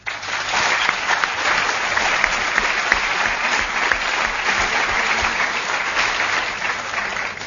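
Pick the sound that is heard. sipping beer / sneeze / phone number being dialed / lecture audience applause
lecture audience applause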